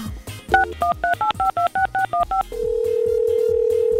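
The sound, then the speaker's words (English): A rapid run of about ten touch-tone beeps as a phone number is dialed to call a contest winner live on air, followed by a steady, continuous tone as the call begins ringing out. No one speaks. “Do you know why we're calling this morning?”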